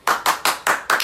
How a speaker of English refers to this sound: I'll clap it up right now. Great.